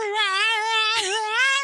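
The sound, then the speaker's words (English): A person imitates a dog's crying with one long, high, wavering whine that holds steady for under two seconds, with no other talking. “My dog cries. Well, your dog goes like...”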